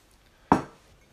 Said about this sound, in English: Pardon me. Done. Nice to finish with a burp. Well, you held it in, but I've eaten that porridge too quickly.